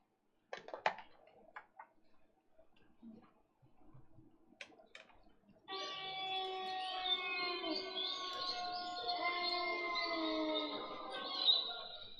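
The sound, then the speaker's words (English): Bird calls: a few brief clicks and chirps at first, then a loud, sustained warbling cry with rich overtones that carries on steadily for several seconds, unbroken, with no talking. “Bird sounds included. Yes. Or an owl.”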